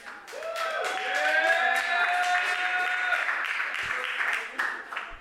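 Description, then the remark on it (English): A crowd claps and cheers to vote for which contestant moves on to the next round, with high whooping voices rising over steady, dense applause that stays fairly loud before tapering slightly near the end. “You guys pick who you want to see go on to the next round, and then you cheer for them.”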